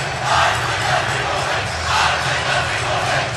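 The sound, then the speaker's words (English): The loud Belmont Braves high school cheering section, wearing white jerseys, roars steadily before a game against Brebeuf Jesuit, a dense wash of many voices swelling in waves of shouts and chants with no single voice standing out. “And that is the Belmont cheering section wearing their white jerseys, and they far outnumber the Brebeuf cheering squad.”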